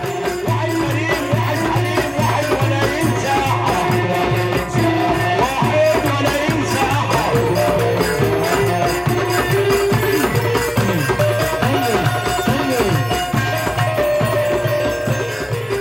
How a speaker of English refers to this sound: Over the course of the set, a series of singers gets up to perform beloved songs from the local repertoire, dancing with arms held high and exhorting the crowd to join in. The vocal mics are distorting like crazy, but no one seems to mind.